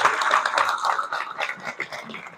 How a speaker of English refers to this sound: Give her a round of applause, please.